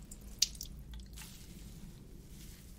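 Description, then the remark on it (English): Quiet squishing of wet hair being squeezed to remove water, with a sharp drip or splash early on and soft watery crackles over a low background rumble. No one speaks. “Just remove some water, moisture from your hair.”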